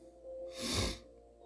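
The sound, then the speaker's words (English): A single sharp nasal sniff, fairly loud, a quick airy inhale lasting about half a second against a quiet background with no talking. “I apologize for the nasal sniffing, by the way.”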